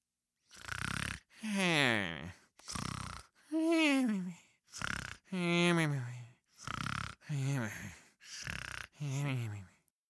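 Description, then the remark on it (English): A voice imitates the loud snoring of Hare sleeping at the side of the racetrack: a steady run of about ten snores, rasping inhales alternating with drawn-out, wavering voiced exhales, each separated by brief silences. “The snores coming from the side of the racetrack confirmed that.”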